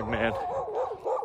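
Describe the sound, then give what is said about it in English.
A dog barks, one loud sharp bark followed by a few shorter, yelping barks in quick succession. “This dog, man.”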